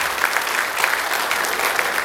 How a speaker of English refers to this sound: Stand up and give them a round of applause. This feels like there was more than that.